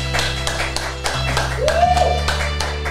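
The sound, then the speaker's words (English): A crowd applauds steadily, with a dense patter of claps running throughout, a rising whistle or whoop cutting through midway, and a low constant hum underneath. “Clap it up, people.”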